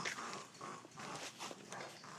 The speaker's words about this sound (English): Oh, no, they're kind of growling at each other.